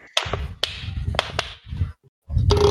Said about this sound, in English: Did someone clap? I heard clapping. I was squeezing the last of the stuff out of a water bottle.